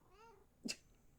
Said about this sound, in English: Kitty! Hello, kitty. Did you want something?